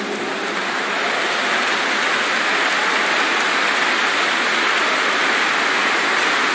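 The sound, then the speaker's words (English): A crowd of people clapping their hands together, a dense, steady wash of applause that holds at an even loudness throughout, with no voices heard over it. “He enjoys the music that comes from clapping.”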